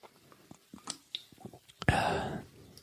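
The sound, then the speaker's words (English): Quiet wet mouth clicks lead into a loud, breathy slurping sip of a drink that lasts under a second, then cuts off. No one speaks. “That was a good sip.”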